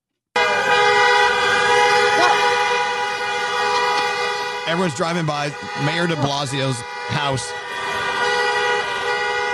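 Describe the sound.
Many car horns blare at once in a sustained, overlapping, loud chorus that runs the whole time, drivers honking at night in front of Gracie Mansion, Mayor de Blasio's mansion on the Upper East Side of Manhattan, while a man talks briefly over the din partway through.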